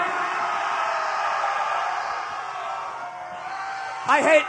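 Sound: audience screaming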